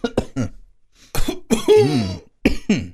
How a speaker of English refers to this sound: Stop coughing into the microphone.